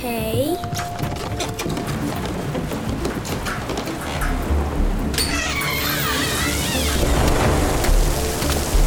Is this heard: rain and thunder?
yes